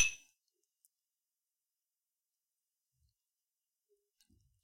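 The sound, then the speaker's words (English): A single bright clink of glasses touching in a toast with Crown Royal Peach whisky, ringing briefly and fading fast, followed by near silence with a few faint, soft knocks. “So we have Crown Royal Peach to try. Smells peachy. Smells peachy. Yeah. Cheers. Cheers.”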